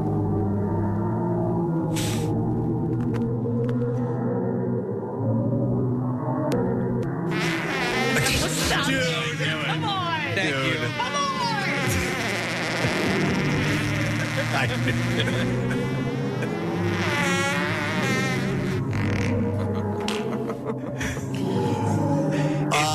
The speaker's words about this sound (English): Scientists say the black hole sends out pressure waves that cause ripples in the hot gas, which can be translated into a note.